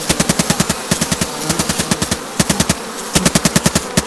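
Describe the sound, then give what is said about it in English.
Rapid bursts of video game gunfire shooting at wasps, sharp repeated shots in quick rhythmic volleys with brief pauses between bursts, loud, over a faint buzzing background with no talking. “Just shooting bursts at anything that moves in here.”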